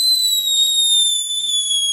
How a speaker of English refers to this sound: So fireworks. Yes. It was fireworks not long ago, a couple of months ago, wasn't it? Depending on when you're listening to this. But never more than 11 months away. Yeah. So sometime in the last 11 months, it was bonfire night.